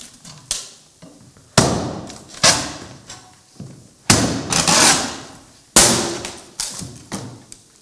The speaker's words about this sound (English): I must break down this door.